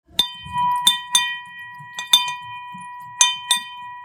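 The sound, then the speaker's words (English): A bright money bell in a restaurant lobby, rung to mark a celebration, struck repeatedly in quick, uneven strikes, about eight dings with a steady ringing tone sustaining between them, clear with no talking. “We at Hudson Kitchen have in our lobby a money bell that we ring when people are celebrating anything.”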